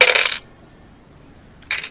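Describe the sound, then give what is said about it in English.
Dice are rolled for a notice check in a game, coming up 8: they clatter across a hard surface in two short, bright rattling bursts separated by about a second of quiet, with no voices. “Roll the notice check once you open the door.”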